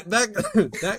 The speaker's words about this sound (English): That hit me. That comment came through. It made me, I was halfway about to cough and I wanted to laugh at the same time. And you just about made me choke.